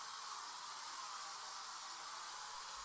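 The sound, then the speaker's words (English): A steady, continuous hiss of a Glade aerosol air freshener being sprayed, lasting about three seconds without a break, with no talking over it. “Oh, that's me spraying some Glade.”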